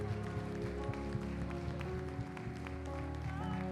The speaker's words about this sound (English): Come on, can you give Jesus a thunderous applause in the house and thank him? Come on, you could do better than that this morning.